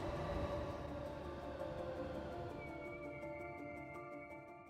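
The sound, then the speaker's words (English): A New York City subway train rolls along the rails with a steady, loud rumble, rising metallic whines and faint rhythmic clacking of wheels, with no one speaking. “It was surreal to be riding on the subway and standing on the subway and looking down and seeing somebody read a newspaper.”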